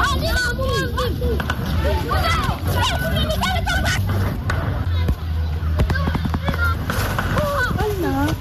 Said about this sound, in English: Tonight, fresh sounds of gunshots echo in Bawku, even as authorities are locked up in a crucial Municipal Security Council meeting over recent killings in the area.